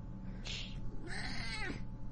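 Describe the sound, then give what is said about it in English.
A cat named Kitty meows twice, a short high mew followed by a longer drawn-out, wavering meow, over a steady low background hum. “Kitty would like us to move on, I think.”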